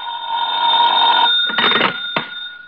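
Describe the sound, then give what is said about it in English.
A telephone bell rings at nearly 11 o'clock at night in one sustained, bright burst of just over a second, followed by short rattling clunks like a receiver being lifted. No voices are heard. “I wouldn't hear from him for days, and then all of a sudden he'd call up at the craziest times.”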